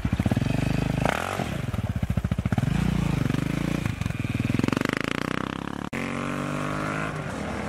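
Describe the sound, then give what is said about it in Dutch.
A motorcycle engine runs loud, its pitch rising and falling as the throttle is revved and eased, with a brief cut near the end before it carries on. “Heb je enig idee waar je naar zit te luisteren op dit moment? Ja, een motorgeluid.”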